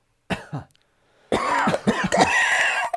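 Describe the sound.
A short, sharp cough up close, followed after a pause by a longer, raspy hacking burst that sounds voiced, almost like someone performing an exaggerated cough.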